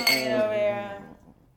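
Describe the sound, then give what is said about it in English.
A bright clink of glasses touching in a toast, ringing out clearly, then fading away over about a second with no talking. “Let's cheers, ladies and gentlemen.”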